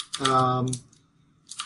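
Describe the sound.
A few sharp, clacky keystrokes on a mechanical computer keyboard, with a brief voiced sound over the first clicks and another small burst of typing near the end.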